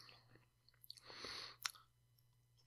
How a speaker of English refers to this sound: I really want to feel like someone's right next to their ear chewing, their mouth open.